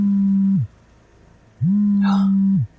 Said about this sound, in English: As she tries to remember who it belonged to, the phone begins vibrating again.